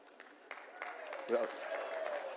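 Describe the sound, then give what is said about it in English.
Scattered applause from an audience, a short burst of uneven claps rising briefly, with a voice calling out over the clapping partway through. “Well, don't clap yet.”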